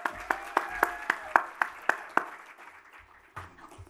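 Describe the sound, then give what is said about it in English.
Audience applause welcoming a speaker: about eight crisp claps in a steady, even rhythm in quick succession, then thinning into a few scattered, softer claps and faint rustling as it dies away. No talking. “So, ladies and gentlemen, with nothing more from me, a big round of applause and welcome to”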